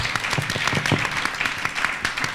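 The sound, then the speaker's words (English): A crowd applauds steadily for a panel at an event in Manchester, many hands clapping in a dense, continuous patter that stays fairly loud and even throughout. “Please, a huge round of applause for our panel.”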